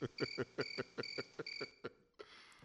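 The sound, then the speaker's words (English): Crickets chirp in a quick, steady rhythm, a series of short repeated pulses at moderate volume, then they stop and only faint background hiss remains. “It went crickets. This is what we heard when I put up the post.”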